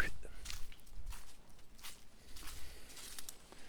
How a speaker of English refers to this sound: We're out here walking along the White River, just south of Indianapolis.